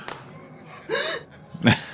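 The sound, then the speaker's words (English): A sharp, voiced gasp with a breathy rush, then a brief pause and a short, forceful shushing burst of breath, both fairly loud with no talking. “Once you chuck it over your shoulder, you hear the sound of a gasp, and then a shish.”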